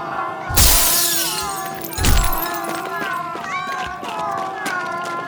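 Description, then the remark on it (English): Glass shatters loudly as someone breaks the glass to grab a skull: two sharp crashes about a second and a half apart, with high wavering yowls of mummified cats carrying on underneath and between them. “Now break the glass and grab that skull, Mord!”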